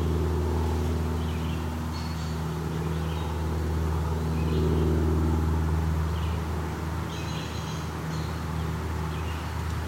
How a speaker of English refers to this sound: Yeah. Fortunately, a lot of airplanes here too.